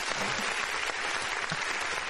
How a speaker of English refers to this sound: Can I get the applause again one more time?